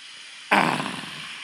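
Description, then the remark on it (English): A single loud slurping sip of hot Yorkshire Gold tea from a fourth cup, an abrupt burst of airy, bubbly noise that lasts about a second and tapers off slightly, with no talking. “Actually, in fact, I'm going to take a sip of this fine high-quality tea.”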